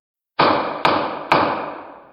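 Three sharp gavel bangs in quick succession, each a loud wooden crack that rings out and fades slowly, with no voices, marking that court is back in session.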